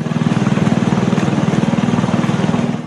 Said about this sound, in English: working hard today mowing the White House lawn.